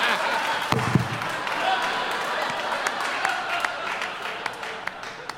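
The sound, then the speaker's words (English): Scattered audience clapping from those who don't think the film Equilibrium is that great fills the stretch, a dense crackle of many hands with occasional sharper claps standing out, steady and moderately loud throughout, with a brief low thump near the start. “Now, applaud if you don't think it's that great.”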